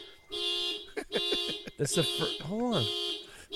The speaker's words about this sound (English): It's the first time in the history of the show that has ever happened that I accidentally touched the goddamn alarm, the car alarm.